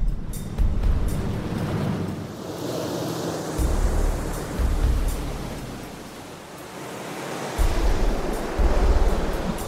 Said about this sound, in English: We've sealed up the cockpit area, we've taped it up so it's on there good, it's tight, and we've left the plug open. And we're gonna have the water come over the kayak and see just how much water goes into the plug.